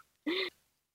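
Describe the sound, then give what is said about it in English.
A single sharp bark from a neighbor's dog, short and fairly loud, standing alone against near silence with no talking around it. “I said neighbor's dog.”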